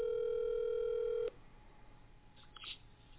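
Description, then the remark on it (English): A telephone ringback tone plays over the line while phoning a friend, one steady electronic burst lasting just over a second, then cuts off abruptly into quiet line hiss with faint background noises. “This is the first phone a friend, ladies and gentlemen. Can you guys hear him?”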